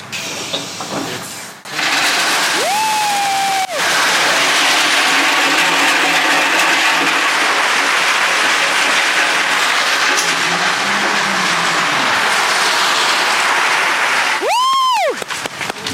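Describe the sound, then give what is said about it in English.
About six tons of rock being dumped out of a truck: a loud, steady rushing roar of tumbling stone lasting over ten seconds. A brief high whine sounds near the start and again near the end. “If anyone ever wanted to know what 6 tons of rock sounds like when you dump it out of a truck, that's what that sounds like.”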